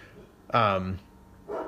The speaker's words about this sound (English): Nope, shoot, the dog's barking. Bad dog. Well, good dog, but still.